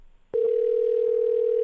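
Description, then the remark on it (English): A steady telephone dial tone switches on abruptly after a brief quiet moment and holds at a constant loud pitch, unbroken, with no voices present. “Which is why she's on the phone”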